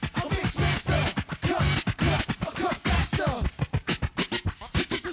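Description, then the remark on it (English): A DJ of a band does rapid turntable scratching in a song, chopping a sample into choppy bursts that alternate a low kick-like thudding tone and a sharper snare-like tone to form a driving beat, loud with no voices. “And what he's doing in the song with the scratching is you hear like a kick and a snare, and it creates a beat that the two different tones.”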